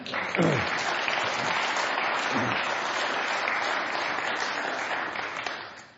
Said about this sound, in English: Thank you, Pastor. Thank you. Let's give the choir another clap. Didn't they do well?